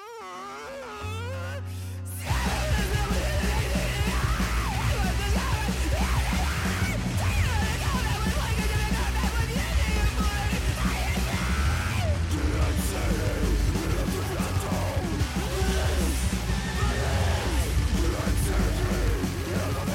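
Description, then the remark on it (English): A loud, aggressive, fast song, the shortest track on an album, bursts in after a brief quieter intro, with screamed vocals over dense, pounding instrumentation that stays relentlessly intense throughout. “The rest of you is just loud and aggressive out the door, all screams and speed.”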